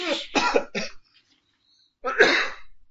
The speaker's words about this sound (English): Why am I the one coughing? I'm not even the one who's sick.